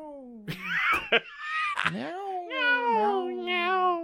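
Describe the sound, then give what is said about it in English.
A person's voice imitates a cat, making several drawn-out, wavering meows in quick succession, fairly loud with no other sounds around them. “Thanks for meowing.”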